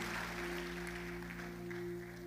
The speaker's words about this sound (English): Clap your hands, have your seats wherever you are.